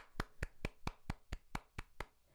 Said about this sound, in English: Guys, that's, we need some applause in here, albeit.